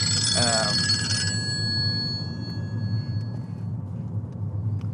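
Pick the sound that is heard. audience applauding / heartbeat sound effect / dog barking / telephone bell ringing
telephone bell ringing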